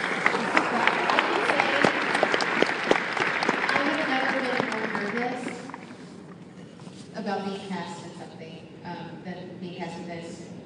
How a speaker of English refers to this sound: I'm going to clap for you.